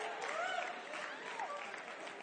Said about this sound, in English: Remain standing. I'm not done. I'm letting the crowd, you know, finish the applause.